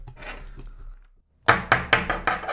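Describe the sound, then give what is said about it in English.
Soft scratchy scraping gives way, after a brief pause, to six sharp, bright taps in quick, steady succession, as tiny sculpting tools chip and tap while making a tiny sculpture against a 60-second timer. No one speaks. “Sound effects of tiny sculpting tools working.”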